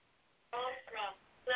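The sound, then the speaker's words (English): A telephone rings in short, loud bursts, two close together and then a third after a pause, with a buzzy, tinny tone and a faint hiss between rings. “I need to wait for that ringing to stop.”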